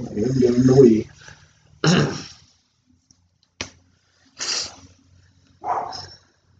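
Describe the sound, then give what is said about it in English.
Dogs bark in a handful of short, irregular bursts separated by pauses, with a sharp click partway through. The barks are moderately loud. “Just hear the dogs barking.”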